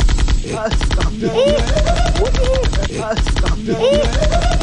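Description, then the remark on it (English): A video-game machine gun fires at a leopard in a long, rapid, unbroken stream of sharp cracks, loud and steady, with wavering tonal sounds weaving over the barrage. “I pulled out my machine gun.”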